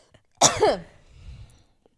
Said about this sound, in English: But yeah, but then just like, let me cough real quick. Hold on.